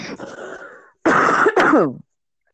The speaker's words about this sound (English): I'm still getting over a cold. I apologize for coughing.